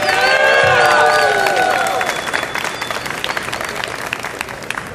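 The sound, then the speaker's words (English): A crowd at a fan panel bursts into loud applause with high-pitched cheers and whoops as Jenna Frank, daughter of Jason David Frank, is introduced, then the clapping continues steadily and fades slightly over the next few seconds. “Give it up for Jenna Frank!”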